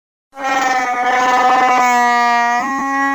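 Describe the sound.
A voice imitates a Wookiee roar: one loud, sustained, wavering howl lasting a few seconds, with a brief stuttering break near the end, and no talking.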